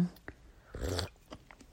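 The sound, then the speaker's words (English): A single sip of raspberry leaf tea from a cup, taken while lying in bed: a brief breathy slurp lasting about a third of a second, framed by a few soft mouth clicks and swallowing noises, quiet. “So you may hear me sipping from time to time”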